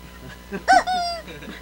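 A rubber chicken toy is squeezed once, letting out a loud, nasal squawk that starts sharp and trails into a drawn-out squeal, with faint murmuring voices behind it.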